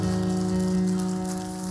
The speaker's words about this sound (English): Clap your hands one more time and bless the name of the Lord this morning.